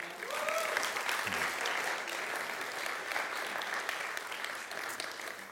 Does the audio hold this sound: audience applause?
yes